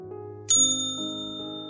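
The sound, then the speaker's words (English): A single sharp strike of a kitchen service bell being slammed gives a bright metallic ding that rings on and slowly fades, heard over a steady low tonal hum in the background. “Lou slammed the bell from the depths of the kitchen”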